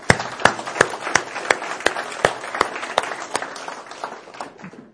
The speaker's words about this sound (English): Let's clap for that too.